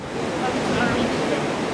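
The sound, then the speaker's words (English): A steady roar of rushing floodwater from the swollen Mendenhall River, far above its usual level, a dense churning hiss that holds at an even loudness without a break. “stood a few feet away from what used to be their backyard on the bank of the Mendenhall River. The water was still far above its usual level”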